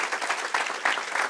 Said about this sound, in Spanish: So we can give the Lord a strong hand clap.